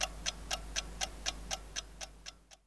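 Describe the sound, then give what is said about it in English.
A timer ticking steadily, about four crisp, bright clicks per second in an even rhythm, with no voices, the ticks growing slightly fainter toward the end. “Let's start the timer.”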